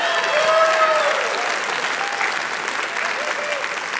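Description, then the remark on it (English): A crowd claps steadily and densely for several seconds, with a few whistles or cheers rising above the sustained applause, which stays fairly loud throughout. “He'll do anything for applause, Lion, I'll tell you.”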